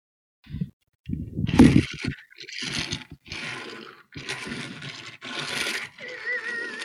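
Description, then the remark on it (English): A toy model of the James Bond Aston Martin DB5 from Goldfinger rolls across a desk in several short, gritty bursts of rumbling wheel noise, with a faint thin whine near the end. “Okay, I'm going to run my James Bond Aston Martin across my desk.”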